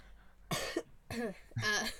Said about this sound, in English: listen, I've been good with the coughing for the most part. Yeah, you've just been hot, tears rolling down your cheeks trying to hold it in.